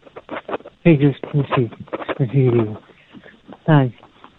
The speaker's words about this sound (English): You don't sound great anyway, and this flipping echo is bouncing you all over the shop.